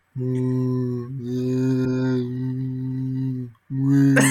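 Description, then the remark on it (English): A voice imitates whale song with long, low, droning moans held steadily for several seconds. A brief pause follows, then another moan begins. No words are spoken. “At least I think that's what whales sound like.”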